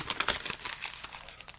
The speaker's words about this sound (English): Crinkle, crinkle. Ready? And make sure you have the raw, you have the right paper.